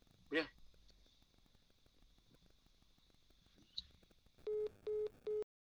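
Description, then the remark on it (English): A phone call cuts off when the caller's phone dies, followed by three loud, evenly spaced beeps of a busy tone. Earlier, a short dog-like yelp sounds over quiet background noise. “I figured Mike hung up on me, but about 5 minutes later, he called me back and said his phone died”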